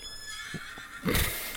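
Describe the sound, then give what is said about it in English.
A horse whinnies in a brief, loud, breathy burst near the end, after a couple of soft thuds against a steady background hum, as a rider arrives on it. No one speaks. “He's arrived on his horse.”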